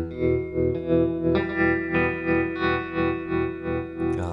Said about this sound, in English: Just really love the sound of that thing. It's a wonderful pedal.